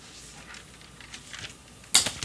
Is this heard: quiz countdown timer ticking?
no